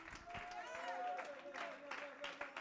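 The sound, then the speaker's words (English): An audience at a church service claps hands to praise God in a dense, continuous patter of applause, with a sustained voice or tone carrying along underneath and crowd noise around. “Somebody clap your hands and give God some praise.”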